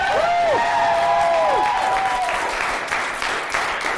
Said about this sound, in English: One last round of applause for Nikki.